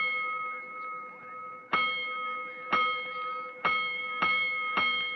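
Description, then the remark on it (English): A loud fire station alarm gong rings during the night with a sustained metallic tone, struck again five times at uneven intervals, each hit renewing the bright, lingering clang. No voices are heard. “Soon after the now raging firemen returned to quarters, the great gong that sounds alarms tapped in during the night rings out.”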